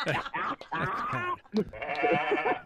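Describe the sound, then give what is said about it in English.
A goat bleats several times in quick succession, each call wavering and nasal, loud with only brief pauses between them. “It's like, either one of them is going to be it's a goat parade. Just what kind of goat?”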